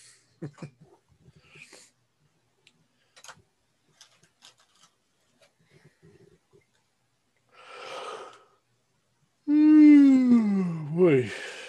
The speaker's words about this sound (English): God, quit yawning.